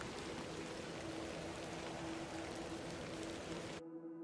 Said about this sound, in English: Thank you for braving the weather. Aye, miss. A little rain is no bother.